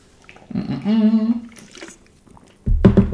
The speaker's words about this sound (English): Just quick sip.